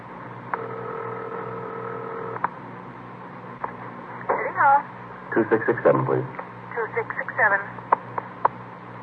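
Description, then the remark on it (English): A telephone in a hallway is being dialed: a steady tone hums for a couple of seconds, then a run of sharp clicks and short warbling bursts follows, clear, with a faint background hiss. “I wonder if I can use your phone.”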